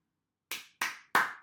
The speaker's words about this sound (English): We should do like a clap thing, because apparently a clap makes it really easy for the editor to figure out where to start point.